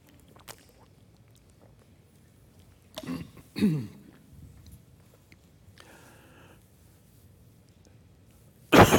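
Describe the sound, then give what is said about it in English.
A preacher coughs and clears his throat during a sermon: a few throat-clearing sounds and coughs come in scattered bursts over a quiet background, with the loudest, sharpest cough arriving at the very end. “So, I'm going to cough one more time.”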